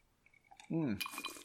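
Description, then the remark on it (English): Two ice cubes clink in a glass of Evan Williams 1783 Kentucky Straight Bourbon Whiskey on the rocks, a few light chinks and a brief high ringing, with a short voiced sound briefly rising between them. “So for today's episode, I am sipping on a glass of Evan Williams 1783 Kentucky Straight Bourbon Whiskey on the rocks. Two ice cubes today.”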